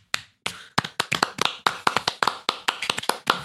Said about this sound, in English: Oh, we clap. Yeah. Clapter is like clapping laughter where it's boisterous and happy. Clapping. Clap if you got it.